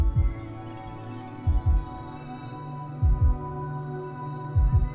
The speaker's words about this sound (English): Place your hands on your heart, feeling the warmth of your skin. Noticing the drumming of your heartbeat.